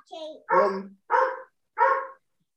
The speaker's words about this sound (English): This isn't working out so well. We got the dog going on. There's so much noise. Everything's going crazy here.